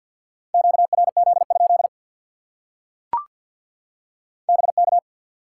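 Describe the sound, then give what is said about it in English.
Morse code tones spelling the word "break": a single steady, mid-pitched beep keyed into quick dots and dashes, one burst of characters, a sharp click in the pause, then a shorter burst. No one speaks. “Break.”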